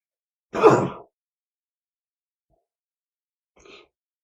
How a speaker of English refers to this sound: I'm going to sneeze. Watch this.